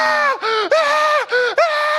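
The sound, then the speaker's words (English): A voice imitates a little kid's screaming tantrum in a supermarket: loud, shrill, harsh wails in about five rapid bursts, each rising and falling in pitch, with no other talk. “And so they're in the supermarket, and this little kid starts losing it, screaming, ah!”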